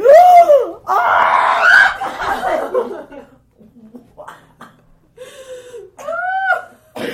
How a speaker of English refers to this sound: So, I also just spilled water on my laptop. Maybe we're going to, it was a blooper that we might insert right here. You can hear the aftermath of us screaming.